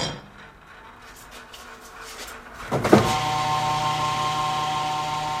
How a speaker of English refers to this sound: He uses a hydraulic hoist to unload two empty barrels and to pick up two 55-gallon drums of used frying oil left for him outside the restaurant.